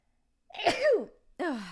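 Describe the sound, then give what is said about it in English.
A single loud sneeze bursts out with a sharp falling tone, followed a moment later by a brief voiced exhale or sniff. “I have to sneeze.”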